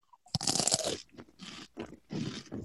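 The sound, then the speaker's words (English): Loud, dry crunching of a crisp Triscuit cracker flavoured with dill, sea salt and olive oil being bitten and chewed, with a sharp initial snap followed by three bursts of brittle, crackly chewing separated by short pauses. “And I am partnering that with just a hint of dill, sea salt, and olive oil.”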